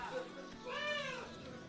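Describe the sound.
A person imitates a cat's meow, a single drawn-out, wavering vocal mew with rising and falling pitch, fairly loud, preceded by a brief murmur of voice.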